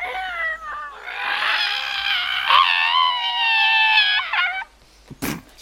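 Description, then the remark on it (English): A person imitates an animal's scream with a long, wavering, high-pitched yowl lasting several seconds, fairly loud, then breaks off into a few short breathy sounds. “But then hear a scream from an animal to the east of you.”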